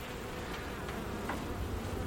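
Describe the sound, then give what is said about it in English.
A dense, steady hum of many honeybees buzzing as a wild-comb frame is taken out of a Langstroth hive and the bees are shaken off, a continuous swarming drone with faint higher whines of individual bees passing, no voices. “So I'm taking the frame out. Yeah. And this is a Langstroth hive. It's all wild comb, so there's no wire. Mm. I'm just going to shake the bees off a bit.”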